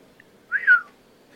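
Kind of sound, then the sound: human body sound, long human whistle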